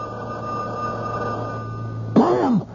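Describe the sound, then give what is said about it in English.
A telephone rings steadily at a moderate level with a continuous electronic tone and a low background hum, then a brief vocal sound breaks in near the end. “Will it never stop? Maybe if you let me tell the service not to put through any calls.”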